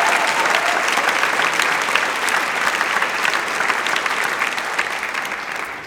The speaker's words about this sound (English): Let's give them a special round of applause as well.